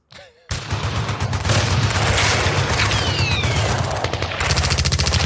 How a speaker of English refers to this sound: It's just a bunch of gunshot sounds. That's sort of … sound effect. It's just army gunshot sounds.